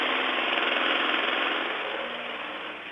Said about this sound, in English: The lawnmower's about a foot and a half away from me.